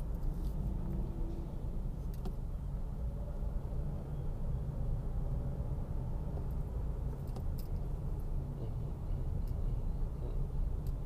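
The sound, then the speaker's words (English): Steady low rumble of trucks, including a Coca-Cola truck and a green truck, rolling past in slowed traffic, a continuous engine drone with faint mechanical clicks and rattles, no distinct pauses or talking. “So all those trucks are going past me right now.”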